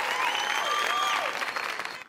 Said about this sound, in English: Yes, I think this person also deserves a huge round of applause.